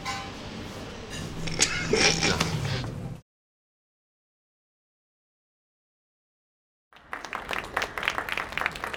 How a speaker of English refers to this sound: So there's, you don't have to clap. It's appreciated, but not necessary.